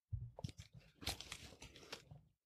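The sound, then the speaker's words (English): Paper being shredded: a run of crisp, crunchy tearing and rustling bursts for about two and a half seconds, uneven in rhythm, with no voices. “It's hard to not shred paper when you do that.”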